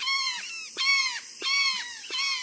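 Loud, harsh calls of a flock of about a dozen brown jays ring out in quick succession in the Mexican countryside, several birds overlapping in a raucous chorus of rasping, nasal screams with brief clicking bursts between them, nearby.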